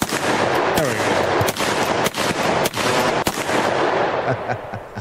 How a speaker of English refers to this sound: Play those gunshots for us. There we go. Where are those gunshots? Where are those gunshots?